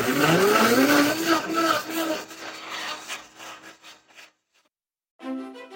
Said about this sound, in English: But first, I'm going to get back to making this cocktail in a blender.